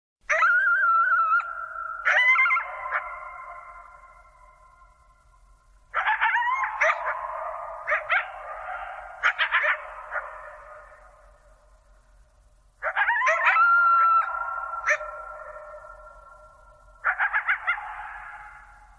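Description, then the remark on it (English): Two coyotes howl and yip back and forth in three long bouts, their wavering high-pitched calls overlapping and trailing off into quiet between each outburst, with no one speaking. “Listen closely, Steve, because there's not one coyote, but there are two. And they're singing to each other after a long season of prosperity.”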